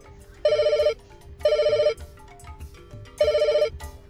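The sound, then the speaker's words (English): A phone call ringing tone sounds three times in loud, bright bursts of about half a second each, with short pauses between them and a faint low background hum underneath. “You still have me as a contact on your phone.”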